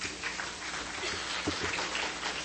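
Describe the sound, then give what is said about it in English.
An audience at a talk about accessible cell phones claps together as partially sighted attendees answer a question, a dense, steady patter of many hands that holds at an even level for a couple of seconds, with no voices over it. “How many of you here are partially sighted? Clap your hands.”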